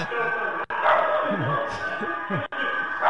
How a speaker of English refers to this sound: All right, and then when your dog barked, it freaked me out.